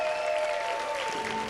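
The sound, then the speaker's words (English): An audience claps together for returning teenagers in steady, dense applause at an even level, with faint sustained tones ringing beneath the clapping. “Our teenagers are back. Can we give them a hand clap?”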